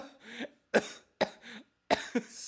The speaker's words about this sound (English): Stop coughing.